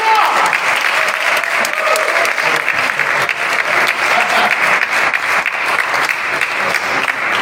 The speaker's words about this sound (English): On your feet now, applaud God. Okay, let's go. What are you waiting on? We've got too much to be thankful for.